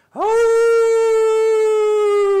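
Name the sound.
wolf howl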